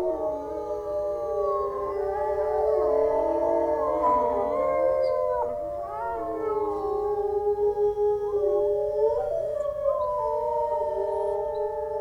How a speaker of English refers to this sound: Occasionally they call like this because, you know, during a hunt, one of the wolves wandered off and sort of got lost, broke away from the pack, so it's helping a pack reunite, because they split up when they hunt, right?